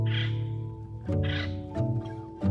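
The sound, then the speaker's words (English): A small crow caws loudly, giving a series of about four harsh, drawn-out calls in quick succession with no other sounds around them. “Like that little crow is calling out.”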